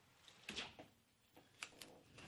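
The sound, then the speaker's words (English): A door being closed, heard as a few quiet knocks and clacks spread over a couple of seconds, ending with a soft latching thud against a faint background hum. “So yeah, I'm going to close this door with this jackhammer sound here, as they are rebuilding the 405.”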